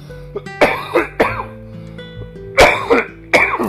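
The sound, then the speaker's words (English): A series of harsh coughs and throat clearing from someone with a scratchy throat, in irregular bursts, about five loud hacks spread over a few seconds with brief pauses between them. “I'm sorry to be coughing so much.”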